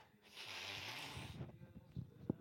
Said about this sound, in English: I put some nose spray on my nose because my allergies are fucking killing me today.